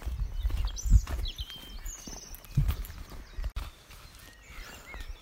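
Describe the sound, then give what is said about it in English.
Footsteps crunch along steadily outdoors while walking onto a nature reserve, a few heavier thuds among them, while birds chirp and whistle faintly in the background. No one speaks. “Right, I'm going to walk onto the reserve and I'll stop again in a minute.”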